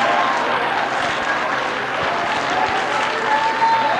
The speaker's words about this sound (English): Come on, if it's worth clapping your hands, clap them with everything.